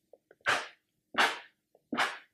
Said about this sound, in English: sorry, she's sneezing. Bless you.